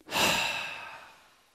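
A single deep, breathy exhale, starting strong and slowly trailing off like a long sigh, demonstrating a meditation breathing exercise. No one speaks.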